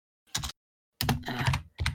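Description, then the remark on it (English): Typing session notes on a computer keyboard in three quick bursts of clattering keystrokes, separated by short pauses, with no voices present. “I should probably be typing this in your loot thing.”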